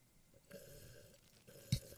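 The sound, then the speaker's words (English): A wet slurping of water, imitating a thick protein shake, drawn out for about a second, then a brief sharp gulp-like burst. “Wait, final water slurp.”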